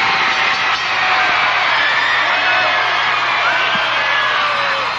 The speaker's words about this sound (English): Capacity crowd on its feet, showing their approval.